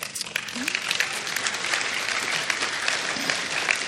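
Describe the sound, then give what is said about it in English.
A crowd applauds steadily, a dense wash of many hands clapping at once, fairly loud and continuous throughout with no talking over it. “You thought that we were finished? That's why you're clapping?”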